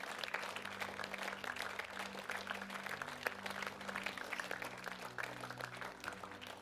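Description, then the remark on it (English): An audience claps steadily for several seconds as a clap offering to their King, a dense, continuous patter of many hands, with sustained low keyboard or organ chords droning underneath. “Can we give a clap offering to our King?”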